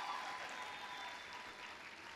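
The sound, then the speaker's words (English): An audience claps together, a dense, steady wash of many hands at even loudness throughout, with no single claps standing out and no talking. “Clap well now.”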